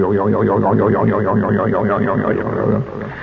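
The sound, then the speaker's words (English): A Buck Rogers toy zap gun made by the Daisy Air Rifle Company zaps with a loud, wobbling electronic warble as its trigger is pulled, its pitch sweeping up and down in rapid repeated cycles for nearly three seconds before cutting off abruptly. “And they designed this zap gun, so when you pull the trigger, it went doing.”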